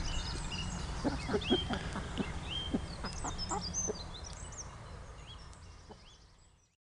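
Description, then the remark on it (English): Hens cluck in short, irregular bursts over a steady outdoor background with higher chirping birds, the sounds gradually fading out toward the end. “we'll talk a little bit about keeping hens.”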